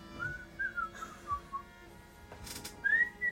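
A person whistles to call back a pet bat, a series of short, rising and falling notes with several quick chirps in a row, moderately loud, and a brief rustling burst between phrases.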